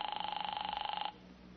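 A telephone bell rings with a rapid, trilling rattle for about a second, then cuts off into quiet room noise. No one speaks.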